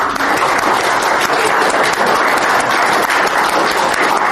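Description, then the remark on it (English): A live show audience applauds Patreon backers steadily, many hands clapping in a dense, continuous wash of sound that holds an even, loud level for several seconds without any voices standing out. “So if you are a Patreon backer, please stand up and accept the applause of everyone else here.”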